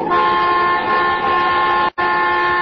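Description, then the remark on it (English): The horn of a car being driven fast on a curvy road blares in one long, loud, steady honk, broken by a split-second gap near the end before sounding again, with no voices over it. “What are you honking now for?”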